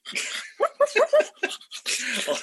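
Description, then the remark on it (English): A person imitates dogs barking, producing a quick run of about six loud, breathy barks in an uneven rhythm. “and you start hearing some noises, and then, shit, dogs! Bark, bark, bark, bark, bark, bark!”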